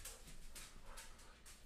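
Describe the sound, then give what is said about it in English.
A dog whimpers and whines in a quick series of short, breathy bursts, fairly faint against a low background rumble, with no one talking. “My dog is attacking”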